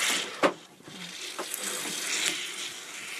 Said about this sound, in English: Because that's when we discovered the explosive kombucha. Yeah, apparently, like this one. Gonna, yeah. It doesn't settle very well. You might actually just want to just open it and let it do its thing.